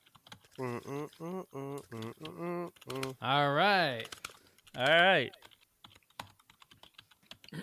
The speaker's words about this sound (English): You typing it in there?